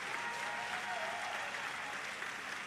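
crowd, audience applause

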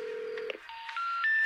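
signal or alarm, phone dialing tones

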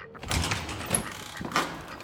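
household object, door opening

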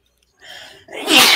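human body sound, sneeze

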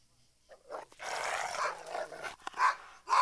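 animal, dogs barking

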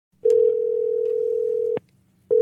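signal or alarm, telephone call ringing tone

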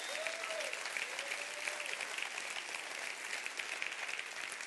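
crowd, audience clapping hands

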